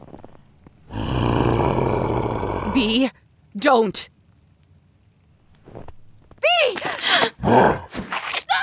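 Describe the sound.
A wolf lets out a loud, rough, drawn-out roar for about two seconds, followed by people speaking in short, urgent bursts.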